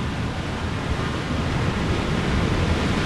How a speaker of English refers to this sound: From there, the water flies down a waterfall into another underground tunnel, clean and making its way to the Little Calumet River.